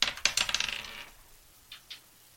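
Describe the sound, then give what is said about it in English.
Twenty-sided dice are rolled in a roll-off, clattering and rattling across a hard table in a fast burst of bright clicks for about a second, followed by two softer taps as they settle; no talking. “We're just going to roll 20-sided dice, see who gets to speak first on the podcast this week.”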